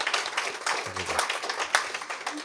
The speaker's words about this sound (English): So let's please welcome Jeff now with that kind of applause people do at golf tournaments. Softer, softer.